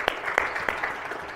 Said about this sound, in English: That makes me happy, and I think that's worth a round of applause.